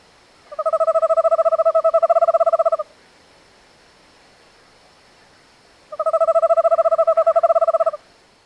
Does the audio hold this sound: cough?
no